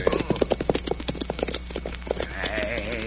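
Quick, uneven clip-clop of the hooves of six or seven approaching riders' horses pounding along, loud and busy at first, then thinning out as a higher, wavering tone rises over the last second.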